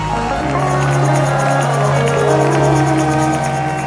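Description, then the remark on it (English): A loud, dense crowd of worshippers clapping their hands in a steady rhythm and shouting praise to God, mixed with raised voices and a sustained musical tone underneath, continuing throughout. “Clap your hands and shout and give him praise.”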